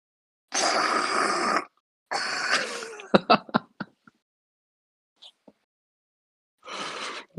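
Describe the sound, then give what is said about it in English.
A person imitates nose blowing with their voice: two long, loud, breathy blasts, then a rapid run of wet, sputtering snorts, a pause, and one more quieter blowing puff. “I'm gonna make the nose blowing sound in sympathy.”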